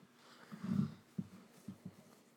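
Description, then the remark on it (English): A female dog grumbles low as she tries to get comfortable: one longer rumbling growl, then a few short, soft grunts as she settles, all fairly quiet with no one talking. “Dog. You are getting angry.”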